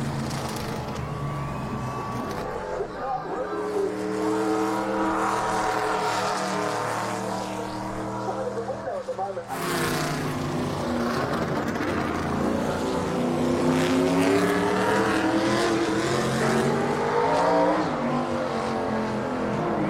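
A loud engine of a 1984 race car in its original Wrangler livery runs, its deep harmonic roar rising and falling as it revs repeatedly, with a brief dip before climbing again. No one speaks.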